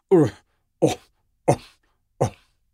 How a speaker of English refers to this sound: And now, off somewhere in the open plain beyond the trees, now at last the lions begin. A deep, huffing cough. Roar! Roar!